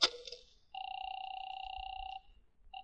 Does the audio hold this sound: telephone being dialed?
yes